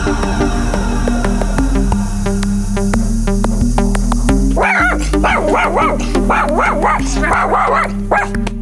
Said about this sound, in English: dog's just come bursting in the studio and gone absolutely apeshit.